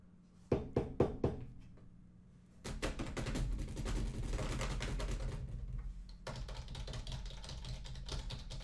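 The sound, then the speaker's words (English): A stockbroker buying stocks makes a handful of sharp, spaced clicks on a computer keyboard, then a dense, fast clatter of typing that runs continuously to the end, with no talking. “just sitting there clicking buy or sell”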